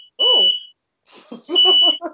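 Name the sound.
smoke alarm beeping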